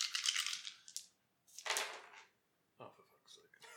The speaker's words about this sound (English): Okay. So roll your dice.